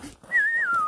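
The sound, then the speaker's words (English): A person whistles a Western movie theme, loud: one long, steady note that bends and then slides down to a lower held pitch, with no talking. “Do that whistle, ….”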